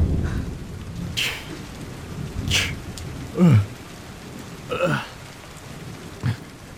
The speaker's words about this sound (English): Big Henry gets up from his lazy boy rock chair and opens his front door when he's confronted with the biggest storm this island has seen in a long, long time.